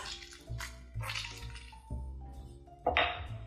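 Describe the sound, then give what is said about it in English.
Wet squishing from a lemon half being twisted on a citrus reamer, in repeated strokes about every half second, with juice dripping into a quarter-cup measure and one louder burst near the end. “And start using my citrus reamer to just catch as much juice as possible in this quarter cup measure.”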